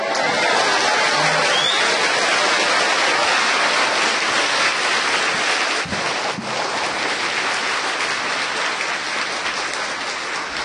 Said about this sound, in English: Even though you heard the story again, you clap like first time. And you laugh like never heard of it before.